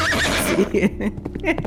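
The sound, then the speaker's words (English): A horse neighs once, loud, a shaky high-pitched whinny that trails off into rough, breathy snorts. “5, 10, I jump on my horse.”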